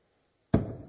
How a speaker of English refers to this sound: The gavel slams and the judge asks, what should the sentence be?